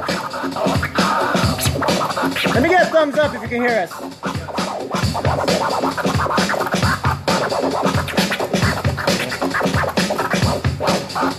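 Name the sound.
DJ turntable scratching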